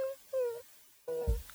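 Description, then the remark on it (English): A person's voice imitates a puppy whimpering: three short, high, nasal whines, each sliding slightly downward, separated by brief pauses, with a soft low bump under the last one. “During the night, you hear a noise outside, like a.”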